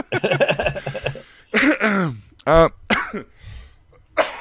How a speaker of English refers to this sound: Oh, excuse me. This damn bloody cough that I just can't. One of those things that got rid of 99% of it. Just can't get that last bit.